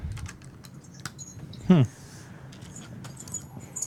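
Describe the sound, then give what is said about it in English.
Irregular key clicks of typing on a computer keyboard, scattered throughout, with a brief louder sliding sound midway and faint voices murmuring in the background. “Just for you folks at home, we got the keyboard working.”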